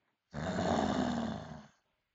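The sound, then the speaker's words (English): A single loud, rasping snore in a cave, lasting about a second and a half, broad, rising quickly and fading at the end, with silence around it and no talking. “Someone was snoring. The sound was so loud that the whole cave was shaking.”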